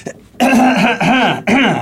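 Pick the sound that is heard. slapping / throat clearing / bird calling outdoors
throat clearing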